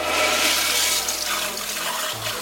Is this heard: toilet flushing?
yes